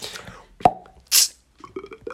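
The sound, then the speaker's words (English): A man imitates a drink being opened and poured into a glass: a sharp mouth pop, a short breathy fizz, then a few quick gurgling, bubbly glugs, fairly quiet, with no talking. “For those of you listening thinking …'s just cracked open a glass and poured it into something, that was him doing sound effects”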